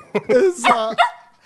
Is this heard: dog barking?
yes